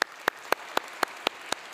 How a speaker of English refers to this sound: Thank you. Oh, thank you. That is so kind. I appreciate when you clap by faith. That's really cool.